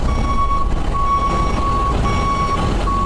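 An armored truck backs up, its reversal alarm sounding a steady series of loud, repeating beeps over a constant low engine rumble, with no one talking.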